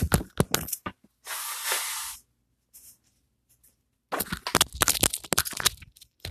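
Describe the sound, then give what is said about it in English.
Tissue crinkles and rustles, then a single loud, breathy nose blow lasts about a second. After a short quiet pause comes a longer stretch of scrunching and crumpling paper. “And I understand the argument where, bro, I just really want to blow my nose.”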